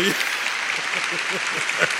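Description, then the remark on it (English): An audience claps steadily in a dense, even wash of applause that holds at a constant loudness throughout, with low murmuring voices mixed faintly underneath. “Thank you for applause.”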